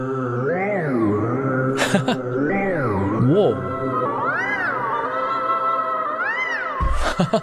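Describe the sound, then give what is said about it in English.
Synthesized choir voices from a synthesizer choir preset sing in gliding, swooping pitches that sound almost like meowing, playing continuously and fairly loud, with a brief spoken exclamation partway through. “Okay, so here's some choir sounds.”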